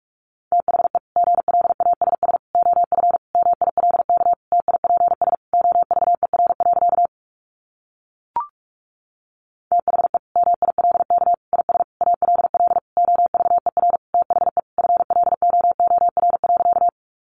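Rapid Morse code beeps at 45 words per minute in a single steady mid-pitched tone, keyed very fast in dense bursts, with a short pause midway broken by one brief blip before the fast keying resumes.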